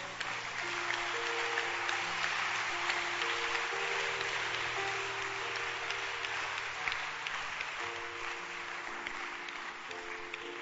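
An audience claps steadily, a dense, sustained wash of applause that holds at an even volume throughout, with soft sustained organ-like tones shifting underneath.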